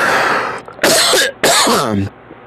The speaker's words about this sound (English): Oh, I'm telling you, friends, this coughing has got to stop. I have been just like weeks now. This thing hasn't gone away, and I that's why I've been off the air for so long.